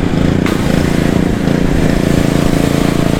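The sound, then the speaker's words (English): An outboard boat motor idles steadily while the engine is flushed and sprayed down with water after an outing, at the home where the boat is stored, a loud, continuous low rumble with a throbbing pulse that holds even for the whole stretch. “he's doing one of the most important things with trailing your boat, is you have to spray this down and flush the engine every single time you take it out.”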